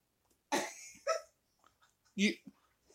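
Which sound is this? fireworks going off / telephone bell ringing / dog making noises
dog making noises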